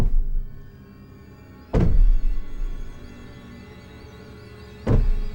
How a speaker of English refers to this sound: When Karen enters that room, we see that Kayako's husband has hanged himself and his body is what's thumping against the wall.